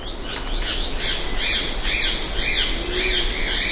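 A ribbon-tailed astrapia, a bird of paradise, gives a run of harsh, rasping squawks as it flies along a forest edge, about six in steady succession at roughly half-second intervals, fairly loud, with no voices present.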